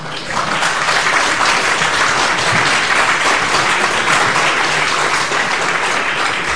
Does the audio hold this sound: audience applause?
yes